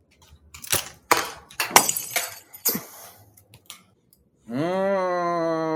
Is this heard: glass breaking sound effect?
yes